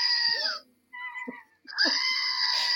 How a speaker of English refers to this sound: So Tim sent me a screaming goat today.